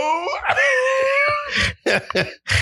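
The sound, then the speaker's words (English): Heavy crying: a long, strained wail that rises in pitch, then breaks into several loud, ragged sobbing gasps in quick succession. “No, that's heavy crying.”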